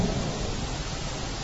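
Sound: rain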